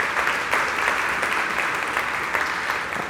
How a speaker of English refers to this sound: You can clap.